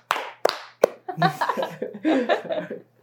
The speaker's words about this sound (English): Do we end up with a clap? I mean, we can do the clap, yeah. Yeah, let's do it. Clap. Ready, set, go.